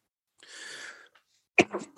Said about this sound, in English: So I've been pretty – I went through a month-long sickness, and it keeps kind of hitting me, especially when I do a lot of talking. So I apologize for the coughing, trying to do it away from the mic.